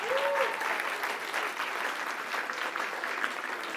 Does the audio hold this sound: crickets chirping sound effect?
no